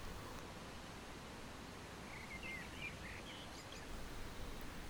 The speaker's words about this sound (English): Ever so slowly, it keeps waking around you. More birdsong fills the air, greeting the drowsy sun, its rays not yet strong enough to warm.